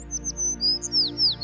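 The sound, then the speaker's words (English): A small sparrow chirps in quick, high-pitched bursts, several short tweets in a row over a low steady hum, fairly clear with no talking. “The sparrow chirped.”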